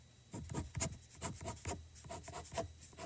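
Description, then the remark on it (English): A regular pen scratches across paper in a series of quick strokes, a dry rasping scrape that rises and falls in short bursts, with no one talking. “What if I use just a regular pen? You can try.”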